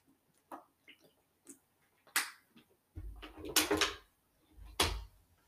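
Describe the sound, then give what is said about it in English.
Someone drinks water: a few soft wet clicks, then three louder gulping swallows with low throaty thumps, spaced about a second apart, and no talking. “I hope that was not a big gulp.”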